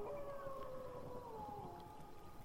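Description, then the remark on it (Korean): Several long, sustained wolf howls overlap in a slow, gliding chorus in the darkness of night in the open wild of the western United States, their pitches drifting gently downward over a low, rumbling background. “신화 속에 존재하던 그리고 서부 지역의 오랜 상징이었던 늑대가 다시금 밤의 어둠 속에서 고개를 쳐들고 긴 울음소리를 토해내고 있다.”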